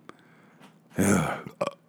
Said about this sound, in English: I burped.